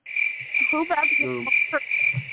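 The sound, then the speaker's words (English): Crickets chirp in a steady, shrill, continuous drone that runs the whole time at a fairly loud level, with a few brief lower tonal calls mixed in partway through. “Who's going to get them crickets?”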